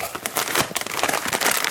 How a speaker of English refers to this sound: Hope everybody's enjoyed hearing all the packaging sounds. I would typically not do that, but it's part of the experience. The chewing, the packaging.